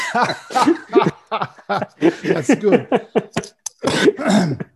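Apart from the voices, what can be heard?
coughing and throat clearing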